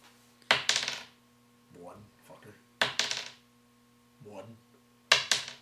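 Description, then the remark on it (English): Three bursts of dice, dropped rather than rolled, clattering onto a hard tabletop during a tabletop game, each a quick double rattle of sharp clicks, with short murmured speech between the drops. “Please actually roll the dice instead of just dropping them on the table.”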